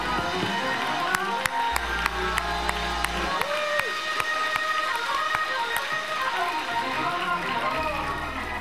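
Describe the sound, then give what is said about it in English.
Hand clapping as a clap of praise to God during a sermon, in a steady, fairly quick rhythm of sharp claps, heard over a continuous murmur of crowd noise and indistinct voices. “I'm just going to clap for just a minute for myself.”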